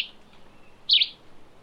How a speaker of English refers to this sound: A yellow-green vireo sings on its summer breeding grounds in Belize. This migratory songbird looks remarkably like the red-eyed vireo, commonly seen in the eastern U.S., with a bright white eyebrow and striking red eye.